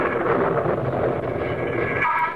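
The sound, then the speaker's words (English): A loud, sustained roll of thunder rumbles steadily for a couple of seconds, deep and broad, with a slight brightening toward the end. No voices are heard. “Just then there was a tremendous thunderclap and the electric light failed.”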